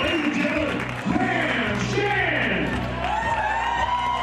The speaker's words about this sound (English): Everybody here in attendance, both teams standing and applauding, the fans here at Miller Park enjoying the player introductions, and it's another gorgeous day.